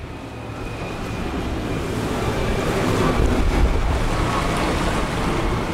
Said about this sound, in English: In the heart of London's financial district, a yellow and red boat run by the delivery giant DHL travels up and down the River Thames every day with packages from all over the world.